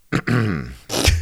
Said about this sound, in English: You can clear your throat all you want. It exists.